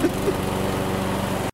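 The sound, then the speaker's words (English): A lawn mower with Quiet Stroke technology, mowing the lawn at 7,000 RPM on the other side of a garage door, runs steadily with a constant buzzing drone and a fast rhythmic pulse that holds level for about a second and a half before cutting off. “I was in the middle of mowing the lawn.”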